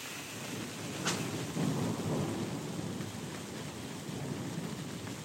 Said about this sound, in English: And I'm one of those people who loves thunder and lightning. I love the drama. I love the way it kind of takes over. When it's thundering, you can't do anything else. You have to engage with the thunder.